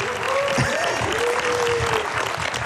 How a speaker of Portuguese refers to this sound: Muito obrigado, Rita. Palmas para a Rita. Nuno! E palmas também para ….